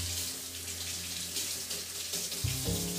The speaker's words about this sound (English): And I'm just going to rinse this shit off. I cut up that stupid root earlier, and I'm going to use the same cutting board because who gives a fuck, right?